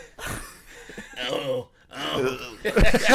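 A woman's heavy, labored breathing, several drawn-out breaths with a groaning, gasping edge, rising and falling in loudness over a few seconds.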